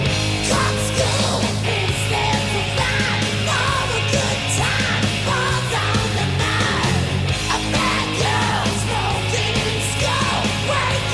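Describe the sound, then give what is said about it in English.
A male rock vocalist yells and shouts over loud, dense band music that stays on one droning E chord throughout, the strained voice pushing hard against a wall of distorted guitar and drums. “Because he's just shouting at you, and it's not good shouting, you know?”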